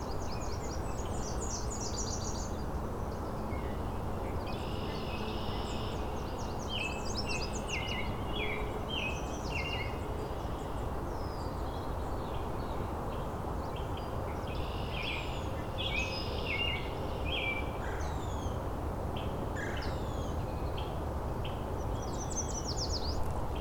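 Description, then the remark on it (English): A Nashville warbler sings among a busy chorus of other birds, with bright high chirps and trills repeating throughout over a steady rushing background noise. “There's a Nashville warbler in front of me.”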